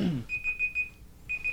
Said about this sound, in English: And that's my timer. It's a good ending. Ding, ding, ding, ding, ding.